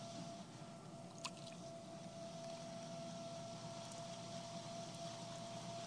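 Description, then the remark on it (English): A steady motor hum runs beneath soft, wet squishing and sloshing, with one brief sharp click early on. A potter keeps applying water to clay spinning on a potter's wheel, fairly quiet, with no voices. “The potter keeps applying the water.”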